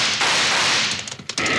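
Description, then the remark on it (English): A loud, sharp rifle shot rings out with a long, noisy ringing tail, then a couple of fainter cracks follow near the end. No voices are heard. “Yeah, one of them's pointing a rifle, Bill.”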